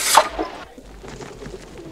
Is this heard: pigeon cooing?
yes